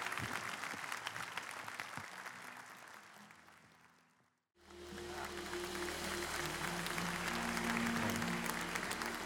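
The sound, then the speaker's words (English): A church audience cheers and applauds the children giving to the Lord, with loud, dense, sustained clapping. It fades to a brief silence midway, then bursts back just as strongly over a low steady hum. “And our kids are going to give to the Lord and just cheer for them.”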